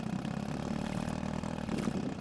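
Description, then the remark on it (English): A small boat motor runs rough and sputters steadily as a boat heads toward a boat launch, its low uneven chugging filling the whole moment with a faint rattling clatter on top. “The motor sputters.”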